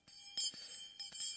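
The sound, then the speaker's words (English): A small hand bell rings out several times in quick succession, its bright metallic tones lingering between strokes, fairly quiet with no voices. “In the Middle Ages, they had to walk with a bell.”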